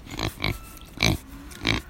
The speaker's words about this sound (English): It's reassuring to know that some aspects of life just still go on. The pigs are still snuffling about in the dirt, and the wind is making a lovely theatre of the trees.